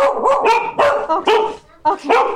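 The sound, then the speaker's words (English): Two dogs barking loudly at a home in Toronto on a hot July afternoon, in a quick run of about six sharp, high-pitched barks, some overlapping, with a brief pause near the end before two more. No one speaks. “They're very friendly. They're just okay, loud. They just need some time to calm down.”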